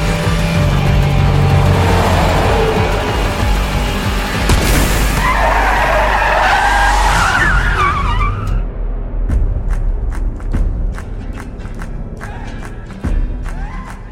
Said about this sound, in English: I just thought that was such a great idea to see car chases on the Autobahn. And not to have computer effects, but full-scale cars flipping six or seven times over, major freeway carnage going on.